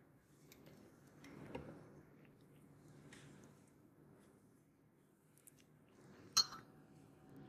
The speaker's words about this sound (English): I don't know if y'all heard that bell, but I definitely just hit that bell.